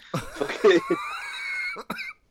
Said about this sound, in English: Oh dear, I thought I could mask that with a cough. No, you really couldn't.